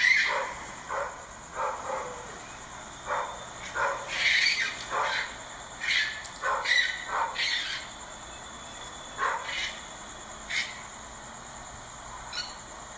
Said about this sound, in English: sounds like a hound dog. Is that a hound dog? Sounds like a very excited hound dog.